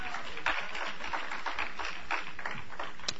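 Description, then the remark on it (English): A crowd claps together in a steady, dense wash of overlapping hand claps as praise for Jesus, holding a fairly even loudness throughout with no voices standing out. “Give him a hand clap.”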